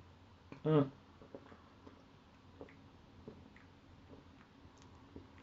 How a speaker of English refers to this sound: So I'm just taking a sip of my drink.